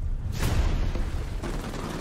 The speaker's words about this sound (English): Just follow the sound of gunfire.